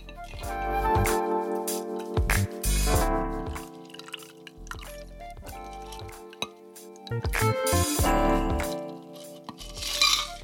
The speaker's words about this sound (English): And then you pour that into an ice-filled rocks glass.